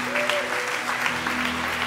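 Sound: audience clapping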